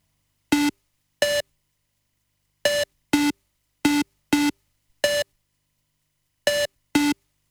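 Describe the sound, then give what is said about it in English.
A five-tone musical signal: short, clean electronic tones played alone, mostly in quick pairs separated by silent gaps, loud. “If everything's ready here on the dark side of the moon, play the five tones.”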